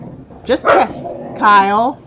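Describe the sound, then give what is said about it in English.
Dogs excited to see a person give two quick, sharp barks, followed by a drawn-out, wavering whimper-whine, all fairly loud. “The dogs are excited.”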